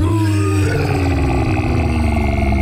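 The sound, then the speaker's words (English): A voice growls in a low, rough, sustained snarl for a few seconds, loud, imitating a werewolf's menacing snarl as it bursts out of the snow, with no words spoken. “It snarls at you.”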